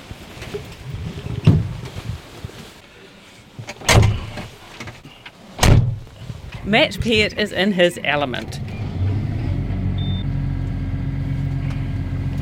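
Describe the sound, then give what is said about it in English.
A few loud clunks and a short stretch of talking, then a 200 horsepower tractor engine starts up, heard from inside its cab at a contractors' workplace in Aotaki among dozens of other tractors and large machinery, settling into a steady, low rumbling drone. “He's in the cab of a 200 horsepower tractor surrounded by dozens of other tractors and large machinery at his workplace, Sims Contractors in Aotaki.”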